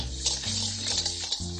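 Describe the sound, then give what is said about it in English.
A steady stream of vinegar sauce is poured into a container, with a continuous splashing trickle and a hollow, shifting resonance as it fills. No one speaks. “All right, so we're gonna pour all this in here.”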